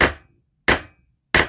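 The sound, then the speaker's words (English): A gavel bangs three times in a steady rhythm to open arguments, each sharp wooden crack loud and brief with a quick decay into silence before the next strike. No voices are heard. “I banged the gavel.”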